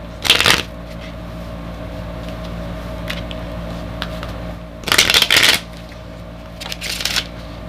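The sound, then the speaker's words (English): Playing cards riffle-shuffled and bridged in midair, in three brisk fluttering bursts, the second longest, over a steady low hum, with no talking. “See, all that shuffling is me actually doing a bridge shuffle in midair and doing it right.”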